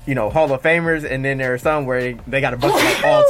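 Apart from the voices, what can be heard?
sneeze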